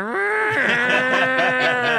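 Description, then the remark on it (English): A person's voice imitates a cow during a Zoom meeting, giving one long, loud moo that wavers slightly in pitch for about two seconds, with no other talking around it. “And I would literally, just to be sane, I would like mute myself on the Zoom and start making animal noises. Just like, what do you think, cow?”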